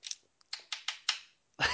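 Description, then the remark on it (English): A non-clicking pen is tapped against a hard surface in a quick, even run of about four sharp clicks, bracketed by a brief rustle at the start and a louder knock at the end. “No, that was another pen, but it's not clicky, so I just tapped it.”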